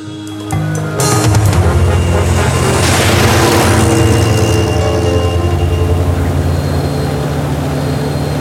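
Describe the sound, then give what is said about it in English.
The engine of Bessie, an open-top car with a flappy tarpaulin instead of a roof, drones steadily on a drive in the country, and heavy hissing rain and rushing wind cover it after a brief quieter start. “Look, Bessie's a lovely car, Doctor.”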